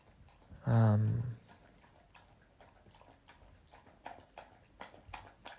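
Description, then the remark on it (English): A dog, Maxi Jacks, laps drinking water with a steady run of soft, wet clicking splashes, following a brief, loud, high-pitched tonal sound at the start. “Drink some water, big boy.”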